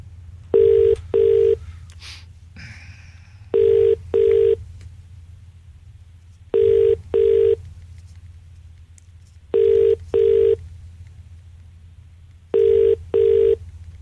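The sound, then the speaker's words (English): A phone line rings out with the classic double-burst ringback tone, five paired pulses evenly spaced about three seconds apart, clear and steady over a low background hum, with no one speaking. “Oh, no, here we go. It's ringing. It's ringing.”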